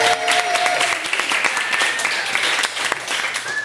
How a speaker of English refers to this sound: Thank you very much for coming to this impromptu Judge John Hodgman Labor Day weekend meetup here at the Rendezvous. Big round of applause for the people here at the Rendezvous.